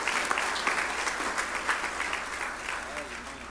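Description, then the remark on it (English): An audience applauds the whole church service after the singing, in a steady, dense wash of clapping that holds at an even level throughout, with faint voices mixed into the crowd noise. “Let's just give the whole service some applause.”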